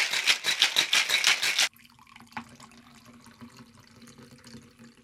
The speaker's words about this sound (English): Let's shake this up and add it to my martini glass.